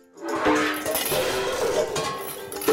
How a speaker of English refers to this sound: I don't know! The pots and pans, they keep pouring out!